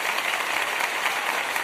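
A steady burst of applause from a group, dense crackling clapping that holds an even loudness for the whole moment with no voices over it.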